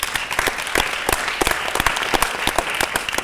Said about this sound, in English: So can you clap for the team that came with us?